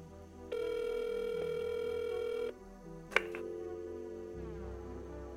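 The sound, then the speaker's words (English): A steady electronic phone tone hums for a couple of seconds, then a sharp plastic clack as a handset is set down, followed by a fainter lingering tone and low background hum. “I hang up.”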